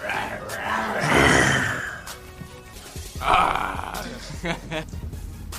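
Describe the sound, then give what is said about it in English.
A person imitates a grizzly growl with their voice, two rough, drawn-out growling bursts, the second shorter, with faint voices and room noise in between. “Like, I don't know if they more growl or more roar, so. Growl. Growl.”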